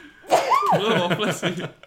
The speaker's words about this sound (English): I need to sneeze.